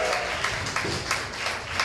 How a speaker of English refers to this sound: Hell yeah. Let's get one more round of applause for Mr. K. Kim.